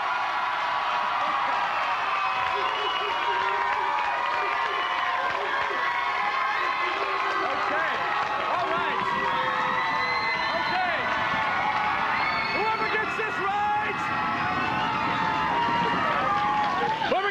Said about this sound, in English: And then they're like, give it up for your host, Chris Hardwick, and this is important. The crowd cheers just too much for him.